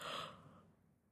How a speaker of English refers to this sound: Oh my God, sorry. I had to yawn, and I did not want to start over, so I'm just leaving that in. Hope you don't mind. Hope I didn't make you yawn.